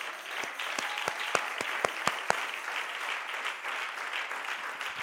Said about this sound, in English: Well, well, well, well. Hallelujah. Clap your hands.